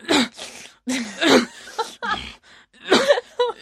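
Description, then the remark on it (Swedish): A voice imitates a man on a bus breathing and coughing at once: a string of raspy, wheezy bursts with short gaps, fairly loud, with no speech around it. “Alternativt också, det var en man på bussen en gång som, det här tror jag att jag har sagt förut, men alltså som andades och hostade samtidigt.”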